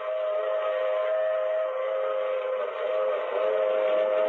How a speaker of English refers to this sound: Ooh, maybe the train ….